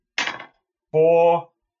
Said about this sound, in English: And that's 1d10. Roll damage. So where's my 10-sided dice? This.